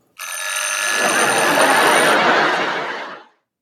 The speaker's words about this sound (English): It sounds like a bell ringing. You can decide whether it sounds to you like a telephone, which is what the wiki says, or an alarm clock, which is what the captions say. It sounds like all those things.